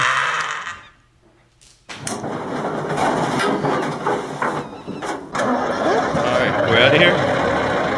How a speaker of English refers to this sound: Oh my God. Your truck sounds like shit.